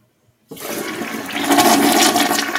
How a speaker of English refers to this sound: What do you think that is? A toilet. There you go. It is a toilet, folks.